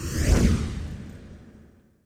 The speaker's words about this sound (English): Swoosh.